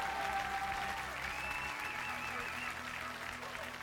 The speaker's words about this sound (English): Well, if you believe that, give the Lord a loud clap offering.